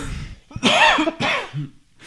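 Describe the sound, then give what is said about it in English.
Harsh choking coughs in two strong bursts and a trailing third, raspy and partly voiced, from someone whose bourbon went down the wrong way. “It's the bourbon down the wrong hole cough.”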